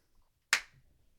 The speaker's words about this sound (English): We're going to do a clap there to play with this part a little bit.